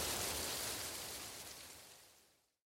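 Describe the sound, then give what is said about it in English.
Heavy rain mixed with hail pours down during a hailstorm in a dense, steady hiss of countless impacts, fairly loud, then fades away to silence near the end. “Hail Storm | ASMR Rain and Hail Sounds”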